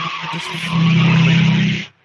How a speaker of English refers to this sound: Did somebody just peel out behind you? The loudest fucking car I've ever heard just drove by.